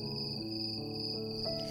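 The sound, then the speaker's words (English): Steady, continuous cricket chirping fills the air, a high shimmering trill that holds without pause, moderately loud against a low background hum, with no voices present. “Let's take a minute to pay attention for once to the crickets.”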